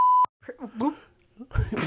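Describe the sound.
A short, loud censor bleep, a steady pure tone lasting about a quarter second, cuts off abruptly and is followed by a person talking, then a burst of noisier voices.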